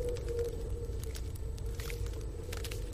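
Footsteps as a sound effect: soft, irregular crunching steps over a steady low rumble with a faint sustained hum underneath. No one speaks.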